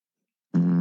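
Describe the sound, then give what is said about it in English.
After a moment of silence, an Alexa smart speaker, asked to fart, plays a loud, low, buzzing, muffled fart sound that starts abruptly and holds steady, rich in rasping overtones, until the end. “That was a muffled one. Would you like to hear another fart?”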